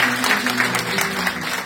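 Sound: hand clapping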